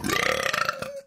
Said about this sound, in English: I'm going to burp.